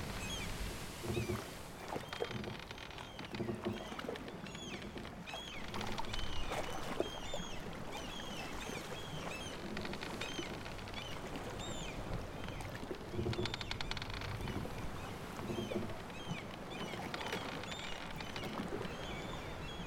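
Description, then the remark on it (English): Gentle water laps steadily while ships creak slowly at their moorings at the Stonetree docks on a quiet, sunny afternoon with no ships coming or going, a soft continuous wash with occasional faint chirps and creaks rising above it, no voices. “Just the gentle sounds of the water and the slow creaking of the ships.”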